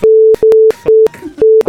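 A loud, steady mid-pitched censor bleep tone cuts in five times in quick succession, short repeated beeps with brief gaps, interrupting bursts of muffled talk between them.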